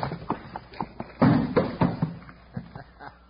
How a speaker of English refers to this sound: All right, Rattler, we got to work fast. Drop that trap door in place. Yeah, here it goes.